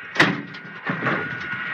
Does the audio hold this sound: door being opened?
yes